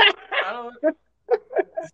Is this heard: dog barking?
yes